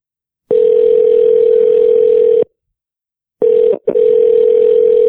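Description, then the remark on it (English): Telephone ringback tone on an outgoing call: a steady, low electronic hum sounds for about two seconds, pauses, then starts again with a brief stutter. No one speaks. “I think I'm going to call Ricky Burton from the Foul Monkeys podcast because I just saw him. So let's see if he answers.”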